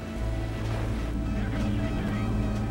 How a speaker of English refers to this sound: The boat passing him is being driven by Johnny Tomlinson, who was a world champion offshore powerboat racer and also was the guy I recruited to do all the training for Colin and Jamie. His boat is the same boat.